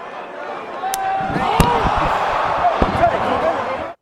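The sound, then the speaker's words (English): A loud, sharp slap cracks out as The Rock slaps Cody Rhodes at an arena wrestling event, over the steady roar of the crowd, with a couple of fainter smacks around it and the crowd noise carrying on throughout. “Oh, the big slap there”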